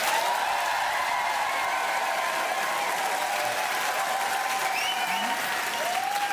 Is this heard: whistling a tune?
no